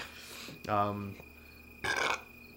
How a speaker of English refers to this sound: Excuse me. What was that? I don't know. Like a demon? Burp.